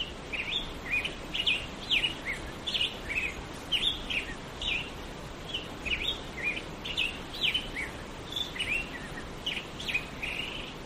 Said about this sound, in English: The grosbeaks start singing around daybreak, and here's a recording I made of what it sounds like out there. You can hear the gentle white noise of the creek in the background.